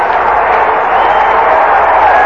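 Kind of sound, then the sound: crowd, stadium crowd cheering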